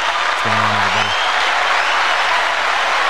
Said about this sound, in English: Plus, that applause is so loud.